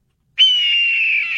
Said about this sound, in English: And then we got a red-tailed hawk, which sounds like this, apparently.